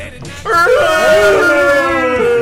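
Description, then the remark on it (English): A person imitates a wolf with a long, wavering howl that rises and slowly falls, loud, with a quieter murmur of background noise before it starts. “Go howl, bitch.”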